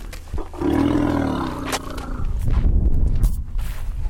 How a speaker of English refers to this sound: On a bright, warm day in Kenya, young elephants romp in a dusty clearing. They are the current crop from the more than 60 young elephants that have been brought here over the years.